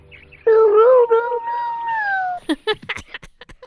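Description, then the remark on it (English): The hound Copper lets out a single long, wavering howl lasting about two seconds, loud and steady with a slight rise and fall in pitch, the sound he makes when he finds what he's tracking, followed by a voice starting to speak. “Copper explains that he's supposed to make that sound when he finds what he's tracking.”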